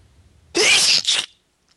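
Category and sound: human body sound, sneezes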